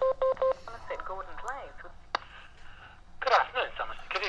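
A short run of telephone keypad beeps as a call is dialed, then muffled chatter over a phone line, a sharp knock, and a louder scraping clatter as a woman fumbles the handset after the call is put through to room one.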